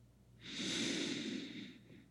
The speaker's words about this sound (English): So let's aim to not do shallow, high breathing. Now let's aim to go a bit deeper. So let's inhale for 3.